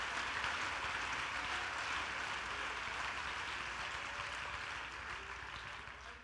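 A large audience claps steadily in a dense, continuous wash of applause at an evening sermon, holding strong for several seconds before easing slightly toward the end.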